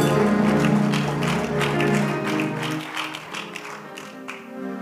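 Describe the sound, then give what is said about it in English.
A church audience claps steadily for several seconds as a clap offering to the Lord, the sharp, dense hand claps layered over sustained musical chords, fairly loud, thinning slightly toward the end. “Give the Lord a clap offering somewhere.”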